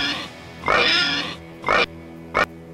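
A pig sound effect: a drawn-out, nasal squealing grunt followed by two short, sharp oinks, loud with no talking.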